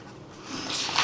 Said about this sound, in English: Sorry, I'm just writing it all down.